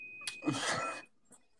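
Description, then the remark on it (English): A steady, high-pitched electronic beep holds for about a second beneath a loud, noisy burst, then falls silent before a second short beep sounds at the very end. “Do you guys hear I heard beeping? That beeping.”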